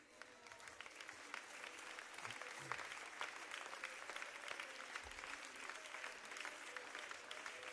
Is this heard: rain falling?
no